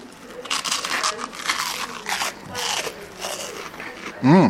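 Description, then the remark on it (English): Crisp, crackly bites into buttered toast made from pre-sliced sourdough from the Bretzel Bakery, with a steady run of loud crunching chews, then a short, satisfied hum from the eater at the end. “Mmm, crunch. The butter does help too.”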